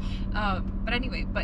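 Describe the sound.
Steady low road rumble fills the cabin of a moving car, a constant droning hum beneath someone talking.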